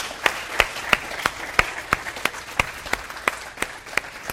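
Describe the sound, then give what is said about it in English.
An audience applauds, with steady, evenly spaced sharp claps about three per second standing out over a continuous wash of crowd clapping, moderately loud and without voices. “Go ahead and let's give a round of applause.”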